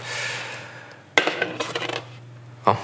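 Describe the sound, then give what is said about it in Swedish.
A stemmed glass that looks like a schnapps glass is set down with a sharp clink, followed by a flurry of small knocks and scrapes as it is handled, then one more bright, ringing tap, over a low steady hum. “Glas på foten här. Ser ut som ett snapsglas.”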